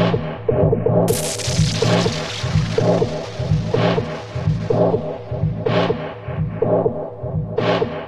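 An electronic dance remix from 2005 plays with no voices: a steady, pulsing low-end beat loops evenly, a bright crash washes in early, and sharp swelling hits recur every couple of seconds.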